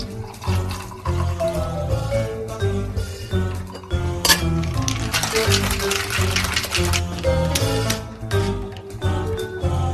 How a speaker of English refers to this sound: Then we're gonna just take a couple cubes of ice, and then we're gonna add the double shot of Death Wish coffee.